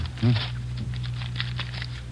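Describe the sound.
Crinkling cellophane and paper rustle as a new deck of cards is unwrapped, a string of small crackly bursts over a low steady hum, with a brief voice near the start.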